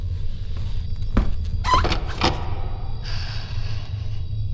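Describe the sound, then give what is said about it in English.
A heavy door opens: a sharp clunk, a brief metallic squeal and a second thud, all over a steady low rumble, with a soft hiss trailing off at the end. “The last door.”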